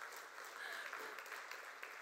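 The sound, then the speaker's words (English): A church audience claps steadily, a dense, continuous wash of many hands with no pauses, holding an even loudness from start to finish. “Yeah, you guys can clap.”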